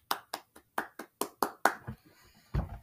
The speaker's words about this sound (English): I am not gonna clap. I don't know why I'm clapping.